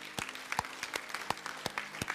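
A church audience claps together in steady applause to thank God, a dense patter of many hands with a few sharper claps standing out, moderately loud with no one talking.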